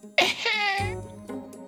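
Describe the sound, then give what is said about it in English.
A harsh cough bursts out, trailing into a raspy voiced groan, followed by a softer second cough a moment later. “It's because I have a cough.”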